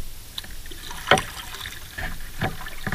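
A kayak paddle dips and pulls through water in several splashy strokes, the loudest near the start, with soft trickling and dripping between them and no voices.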